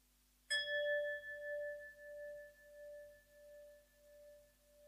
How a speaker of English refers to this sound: Now we are coming to the end of the meditation session. I will ring the gong 3 times. Then you can come out of the meditation.